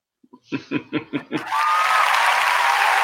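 A few rhythmic bursts like laughter lead into a small round of applause, a steady wash of clapping that carries on to the end.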